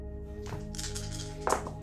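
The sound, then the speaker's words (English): Three dice clatter and rattle across a hard surface in a quick burst of small clicks, ending with a sharper, louder knock as they settle, rolled for a technology roll in a tabletop game and landing two sixes and a five. “I'm going to have you roll a technology roll, please. Sure. Ooh, look at those three dice.”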